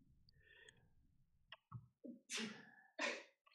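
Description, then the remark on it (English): Two sharp, forceful sneezes, preceded by a few short catches of breath, with a low background hum and no talking. “You could have kept talking while I was sneezing.”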